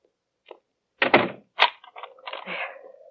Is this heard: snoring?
no